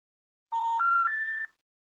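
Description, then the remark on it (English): A telephone line tone on a call to a DragonCon 2006 number at 10:12 on a Thursday night: three steady electronic beeps stepping upward in pitch, played back to back for about a second, with no talking; the number has been disconnected. “It's ringing. It's still ringing.”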